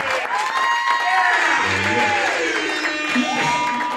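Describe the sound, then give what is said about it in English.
An audience at a live show celebrating its first birthday applauds and cheers loudly and steadily for about four seconds, with scattered whoops and shouted voices rising over the dense wash of clapping. “So just clap it up for us.”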